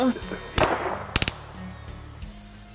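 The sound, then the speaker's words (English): A loud single gunshot rings out, followed about half a second later by a rapid burst of three more shots, over a low background hum. “No, I heard a gunshot and then the power turned off.”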